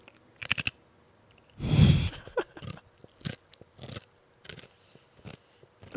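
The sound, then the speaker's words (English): Crisp, crackly crunching of crisps being bitten and chewed for a guessing game: a loud crunch followed by a series of short, sharp snaps in an irregular rhythm, with no talking. “About to crunch in 3, 2, 1...”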